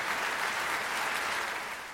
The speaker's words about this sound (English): I thought there were going to be some applause somewhere. They're being very polite there.